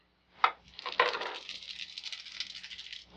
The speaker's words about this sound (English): Okay, I didn't need as many dice as I thought I did.